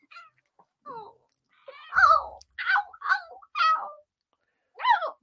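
A cat meows and yowls in a string of about six short, wavering cries with brief pauses between them, loud, some sliding sharply in pitch.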